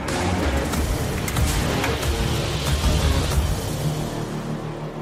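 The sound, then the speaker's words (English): A pre-production pickup truck with Multimatic PSSV shocks and skid protection charges off-road, its engine roaring loud as it accelerates, with steady low rumble and scattered bursts of crunching, thumping impacts throughout. No one speaks. “this pre-production truck you see behind me. Let's go see what it'll do.”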